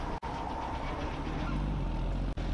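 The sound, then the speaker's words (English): An approaching Jeep engine roars steadily and loudly, a thick low rumble with a rough, grinding texture, briefly cutting out twice in quick gaps. “The engine was now so loud that she knew it was time to spring into action.”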